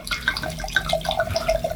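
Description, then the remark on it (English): Alcohol pours steadily into a glass, with a continuous splashing, gurgling trickle and small bubbly glugs throughout; no one speaks. “While I pour my alcohol.”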